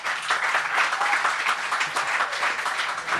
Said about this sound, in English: That's the end of the first half. Big round of applause for everyone in the panel.